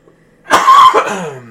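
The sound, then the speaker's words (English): A harsh cough from a person ill with COVID bursts out loudly, one rough hacking spasm that trails off into a raspy exhale, with no talking around it. “I know half this thing is just me coughing at you.”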